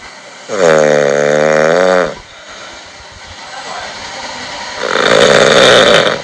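Two loud snores with a quiet pause between: a drawn-out, buzzy inhale snore, then a rougher, breathier rasp a few seconds later, with no talking.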